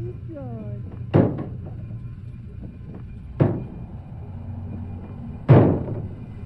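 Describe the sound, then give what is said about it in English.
A back door slams shut three times, each a loud, sharp bang spaced about two seconds apart, hard enough to shake the house, over a low steady hum and faint background murmur. “He sang over and over, all the way down the hall, through the kitchen and out the back door, which he slammed so hard as to shake the house.”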